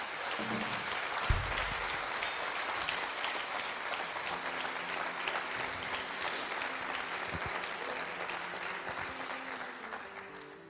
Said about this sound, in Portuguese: Você podia aplaudir ao Senhor.